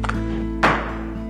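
A single heavy thud lands about halfway through, the dull impact of a body or shoulder slamming against a house door as a man and police try to break it down to get inside, over a steady low background hum with no voices.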